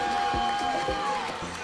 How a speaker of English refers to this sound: They are jumping up and down at the edge of the pool, cheering and shrieking for their teammates in the relay and during all the heats. Each school has an elaborate call and response cheer.